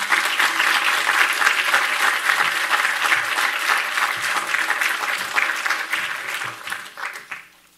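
Sustained applause from a sizable audience, dense and steady clapping that fills the room for several seconds before thinning out and fading near the end.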